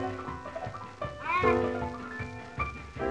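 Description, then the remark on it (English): A male cat striding over meows clearly, its drawn-out, rising-and-falling cry fairly loud, with a shorter call following, over faint background noise. “See that cat striding over there? Look like he's trying to get something from me.”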